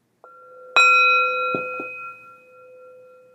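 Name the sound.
single meditation bell ring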